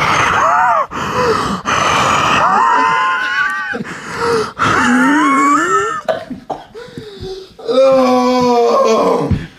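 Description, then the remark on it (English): A voice imitates loud, heavy breathing, a run of strained, groaning huffs and gasps repeated in close succession. “And he breathes really fucking hard.”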